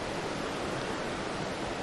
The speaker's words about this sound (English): We'll mute the sound of the river.